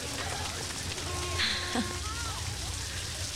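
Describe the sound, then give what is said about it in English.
Steady rain hisses throughout, a dense, even wash of patter with no pauses, while a few brief, thin tonal chirps rise faintly above it midway. “Everyone's trying to get out of the rain.”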